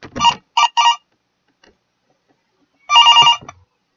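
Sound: telephone ringing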